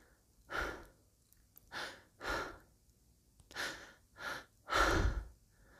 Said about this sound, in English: They're both panting as he comes down.